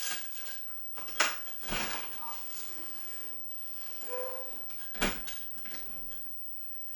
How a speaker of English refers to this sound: I have to open the door because the bird is coming back for the third time.